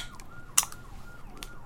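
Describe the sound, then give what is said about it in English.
A can of imported beer from BevMo is cracked open with one short, sharp hissing pop, while a faint siren wails up and down steadily in the background. “This is in a can, so I have higher hopes for it.”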